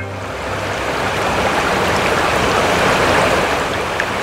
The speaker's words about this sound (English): Where the Humber River meanders through, the water slowly making its way south to Lake Ontario.